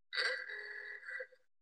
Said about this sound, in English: A little sound of coins dropping on my phone.